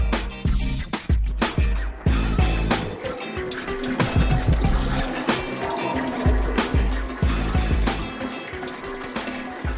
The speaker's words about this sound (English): Filling up the water that will soon become honey wine.